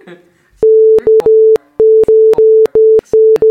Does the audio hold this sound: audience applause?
no